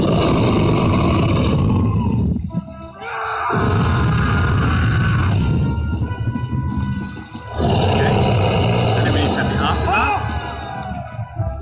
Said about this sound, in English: Okay. Incident. Dragon attacks.